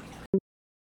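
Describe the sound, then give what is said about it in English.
A single sneeze, a sharp breathy burst of noise that cuts off into a brief voiced yelp, followed by silence. “Bless you.”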